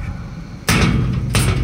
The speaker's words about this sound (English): He throws himself against the door, but it hardly moves, again and again.